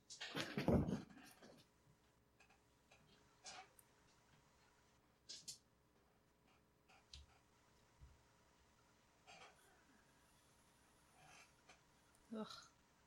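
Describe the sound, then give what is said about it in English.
A dog heaves and retches, one loud wet burst at the start, then scattered smaller gagging and shuffling noises spaced out over a quiet background. “At least cats throw up solid.”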